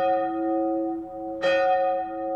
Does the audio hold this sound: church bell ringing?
yes